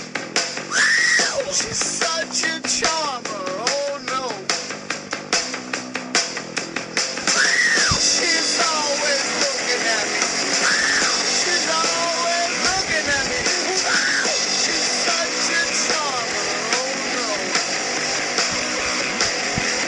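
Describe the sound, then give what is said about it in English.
Loud, dense rock music with a harsh, screaming vocal that rises in repeated strained wails over distorted guitars and pounding drums, sustained at full intensity throughout. “This is the screaming one.”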